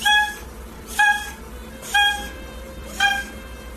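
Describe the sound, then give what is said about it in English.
A cat makes four short, high, squeaky cries at an even pace, about one per second, each a brief nasal squeak with no talking around them. “Well, it was a cat doing what? Just being a cat.”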